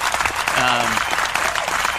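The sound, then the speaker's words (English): An applause sound effect: steady applause from a crowd fills the whole two seconds, a dense crackle of clapping hands, with a short voice briefly rising over it near the start. “Yeah, I gotta have the applause too.”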